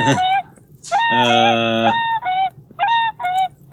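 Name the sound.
geese honking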